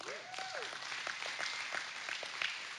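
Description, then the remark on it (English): An audience applauding the news that nine of the school's 22 students came from public school, with steady, dense clapping throughout, broken by a few sharper claps and a brief rising-and-falling whoop early on. “Y'all need to applaud on that one.”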